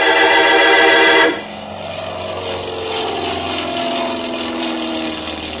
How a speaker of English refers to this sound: It was a nice afternoon, so I stood watching some of the planes take off and land.